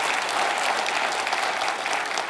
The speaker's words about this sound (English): Somebody wanted to clap on that? Okay, that's good. Okay, let's clap really loud together so that the people online hear that. You ready? 1, 2, 3. Okay.